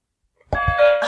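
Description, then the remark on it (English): A two-tone doorbell-style ding-dong chime, used as a quiz bell after an answer is given, rings out clearly after a brief silence, its bright tones sustaining and ringing on with no voices over it. “The answer, then the bell.”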